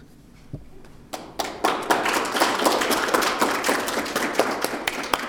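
Applause from an audience starts with a few scattered claps, then builds quickly into steady, dense clapping that holds at a moderate level to the end.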